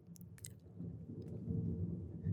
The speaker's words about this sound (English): And the thunder just keeps rumbling outside, which is just amazing.